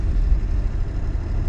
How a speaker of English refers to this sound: A 2002 Ford Excursion 7.3 liter diesel beast. And I love this car. It's loud, it's big, and it pulls our camper.